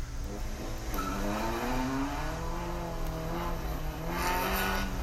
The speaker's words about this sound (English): But she's drifting the shit out of this car. She's having fun.